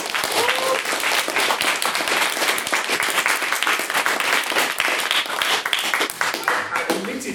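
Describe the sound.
Steady applause from a debate audience after a maiden speech, a dense crackle of many hands clapping at an even, loud level for several seconds, with faint voices mixed underneath.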